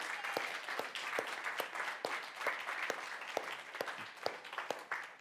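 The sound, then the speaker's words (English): The North Hills church audience applauding two men together, a dense, steady wash of clapping with a few sharper individual claps standing out, sustained for several seconds at moderate loudness. “So, church, can we give them a round of applause?”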